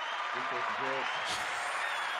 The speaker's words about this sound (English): Gotta give you the applause.